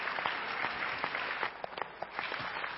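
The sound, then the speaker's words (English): A church audience applauds together during a morning service, giving a hand clap of praise to the Lord: a dense steady wash of many hands clapping at once, sustained for a few seconds without any voices. “the Lord a hand clap of praise for that this morning.”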